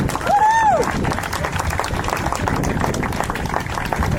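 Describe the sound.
A crowd applauds steadily for several seconds, dense clapping filling the space, with a brief rising-and-falling whoop from one voice near the start.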